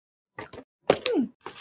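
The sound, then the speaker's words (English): Door number one of a cardboard advent calendar with 24 boxes being pried open: two soft papery scuffs, then a louder tearing rip with a creaky, falling squeak, followed by a brief rustle. No one speaks. “So let's open door number one.”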